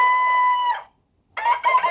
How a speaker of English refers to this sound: Now, what the heck do you suppose that is? It's a rooster.